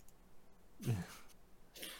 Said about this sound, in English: Are you over your coronavirus battle? I mean, I'm supposed to not be contagious anymore, but I'm still coughing a little bit